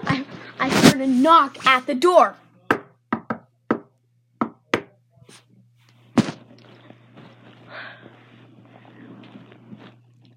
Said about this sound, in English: I hollered really excitedly, but just then I heard a knock at the door.